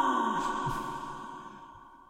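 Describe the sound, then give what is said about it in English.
A lingering echo tail rings out after a spoken word, with a hollow, resonant hum that fades steadily over about two seconds, no clear speech left. “Maybe we'll just go with the echo next time alone.”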